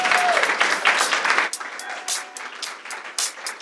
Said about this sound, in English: So thank you all for coming. I hope you had a great evening and enjoy. One more round of applause for the artists this evening.